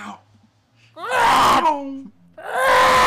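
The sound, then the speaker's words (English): A voice mimics a TIE fighter's scream: two loud, harsh, wailing bursts, the first long and falling in pitch, the second starting after a brief pause, alone. “Like instead of chiming, it's the TIE fighter scream. But just for the duration of how long a chime was.”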